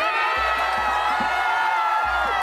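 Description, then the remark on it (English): A giant crowd at a rally cheering in the streets, many not wearing masks, a dense, steady roar of many overlapping voices with high shouts and whoops, loud and continuous, with occasional low thumps underneath. “Giant crowd in the streets, many not wearing masks.”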